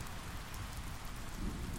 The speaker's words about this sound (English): Now, here I find myself, in my shelter, listening to the gentle drumming of the rain on the roof. I'm pleasantly surprised that my makeshift shelter is keeping me warm, dry, and comfortable.